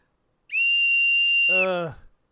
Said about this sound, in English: It's a whistle.